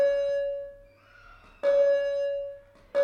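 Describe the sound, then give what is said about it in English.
A school bell rings out loud and clear at a school, marking the end of recess, with three bright chime strikes and a sustained ringing tone between them and no voices. “We do this at school, and that's the bell going...”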